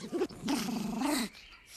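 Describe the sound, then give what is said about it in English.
A dog growls: a brief rumbling snarl, a short pause, then a longer, steady, throaty growl lasting nearly a second before it cuts off into quiet. “It's like it literally just growled at you.”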